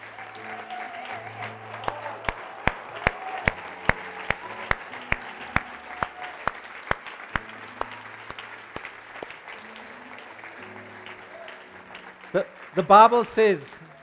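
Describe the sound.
During a church service, an audience claps in a steady, rhythmic beat for people coming to the front to be prayed with, over a low murmur and sustained background tones; the clapping thins out and fades, then a voice briefly rises near the end.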